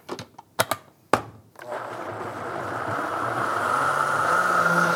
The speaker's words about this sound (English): We're gonna throw the lid on here, got it in the blender, and just blitz this down until it's smooth.